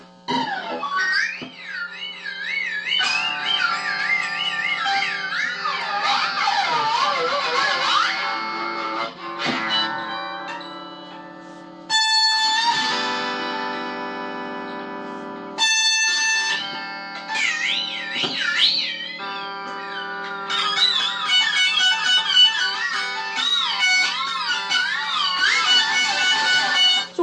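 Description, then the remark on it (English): Distorted electric guitar, played to make a spooky 'evil droid' noise, wails through bent, wavering notes and long sustained chords, played loudly in several phrases separated by brief gaps, with no one talking. “Gotta turn on some distortion.”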